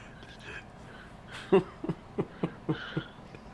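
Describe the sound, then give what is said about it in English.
Heavy, huffing breaths of a person out of breath on a phone call, about six sharp, noisy exhalations in an uneven rhythm, with a thin, muffled quality of a phone line. “Who is breathing heavy on the fucking phone, though?”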